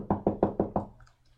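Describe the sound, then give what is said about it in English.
Five quick, evenly spaced knocks on a wooden door, fairly loud, followed by a brief quiet tail with faint room noise. “As you're all having this conversation, you hear a knock at the door.”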